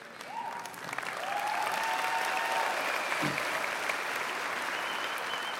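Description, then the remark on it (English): A crowd applauds people who have just shared their business journeys, the clapping swelling within the first second into a dense, sustained wash of hand claps that holds at a loud, even level throughout, with a few whistles over it. “Why don't you give them a really good round of applause and thank you, guys.”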